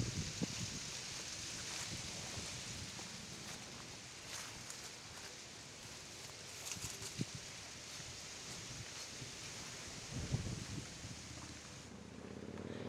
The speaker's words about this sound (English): So now you should be able to hear above my head. If that's where the sound is coming from, above my head right now. The sound of the wind in the trees. Meanwhile, below my feet, you should be able to hear the sounds of my feet through the leaves.